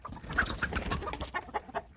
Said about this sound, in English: Chicken number one. Here's a chicken.